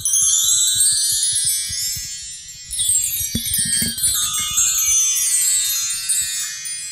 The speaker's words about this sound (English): will you ring your chime that's right behind you?